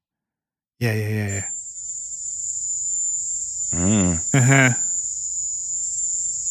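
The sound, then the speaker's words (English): A harsh, piercing high-pitched tone like a sonic weapon recording, steady and cricket-like, drones continuously for several seconds while a person briefly murmurs short acknowledgments over it. “I understand the cricket thing.”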